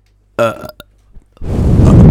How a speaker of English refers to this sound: Can I burp into the mic?